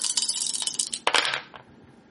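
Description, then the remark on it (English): Four dice clatter and tumble across a hard surface for about a second and a half, a bright rattle that peaks briefly, then settles into quiet. “Only got 4 dice.”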